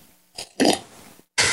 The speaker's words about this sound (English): I can hear the quality in that sip. Seriously, it's so good. If you guys have not tried pour over coffee, any of our listeners, you should do it.